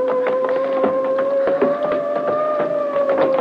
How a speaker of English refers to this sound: I hear it. Maybe the killers are returning. It's police boat.